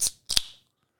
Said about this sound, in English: Got to take a sip of beer here.